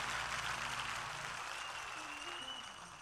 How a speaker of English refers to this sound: Of course, let's give, again, a rousing applause to Pastor Charles Blake II. Come on, clap your hands for him, his lovely wife.